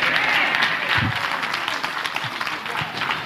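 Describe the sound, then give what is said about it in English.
A crowd claps steadily in a dense, continuous burst of applause, with faint voices and a few low murmurs mixed underneath. “If you know what I'm talking about, clap your hands and say amen.”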